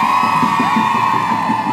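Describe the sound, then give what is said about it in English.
A crowd cheers loudly and steadily after a speech by Audre, with high whoops and shouts rising over a dense wash of voices and clapping that holds without a break from start to finish. “The crowd erupted in applause.”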